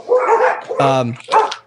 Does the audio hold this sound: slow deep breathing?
no